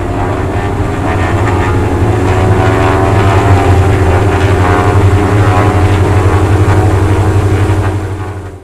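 A light propeller aircraft engine is started and runs steadily outside Hangar 1 at Cambridge, a loud low droning hum with a throbbing pulse that holds constant for several seconds before easing slightly at the end.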